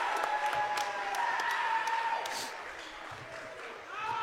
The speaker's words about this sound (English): Dyke hits the free throw, gets a nice round of applause.